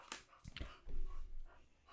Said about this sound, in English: And that's our producer dogs. Right there. That's Winnie, our producer.